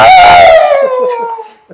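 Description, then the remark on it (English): A person's voice imitates the screaming engine of a strange motorcycle-like vehicle revving up: one loud, strained, sustained wail that starts high and slides down in pitch before trailing off over about two seconds. “Is it what it sounds like when you rev it up? Yeah, that's what it is.”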